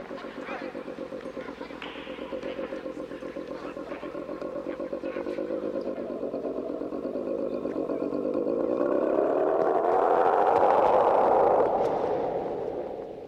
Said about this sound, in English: That growl when he's under the dog pile. It sounds like a car revving. Exactly. It's like, there's no way it's not like a boat or a skidoo or something. And they just slowed it. They pitched it down a little bit, slowed it.